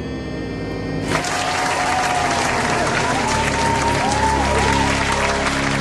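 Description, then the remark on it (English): Loud applause for Arnie Spanier erupts after about a second and keeps going steadily, a dense wash of clapping with faint voices and some tonal sounds mixed underneath. “Wow, that was like a Dolby clap.”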